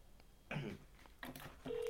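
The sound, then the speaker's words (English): Phone keypad tones beep in three short, separate bursts as a phone number is dialed to make a call, clear against a quiet background. “I'm calling him.”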